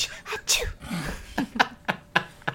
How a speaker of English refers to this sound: My goddamn cat sneeze.